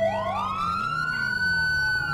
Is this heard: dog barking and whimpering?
no